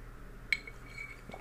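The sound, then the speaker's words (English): A single bright glass clink rings out and lingers, followed by a fainter second tap, ice knocking against a glass of iced coffee. No talking, just quiet background noise. “I need some iced coffee.”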